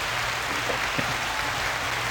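A steady wash of applause, many hands clapping in a dense, continuous patter for a couple of seconds at an even, moderate level, with no voices standing out.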